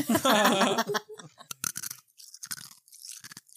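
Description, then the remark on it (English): Chewing of chewy milk tea jelly cubes: a run of irregular, moist crunching and squishing bites, fairly loud, with no talking over it. “Bite it, it kind of chews. Do y'all want to hear it?”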